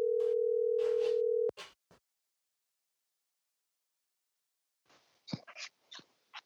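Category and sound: signal or alarm, telephone dial tone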